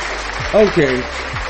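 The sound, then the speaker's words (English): An audience claps in a dense, steady patter, with a few voices briefly cheering or calling out over the applause midway through. “Clap, clap if you can.”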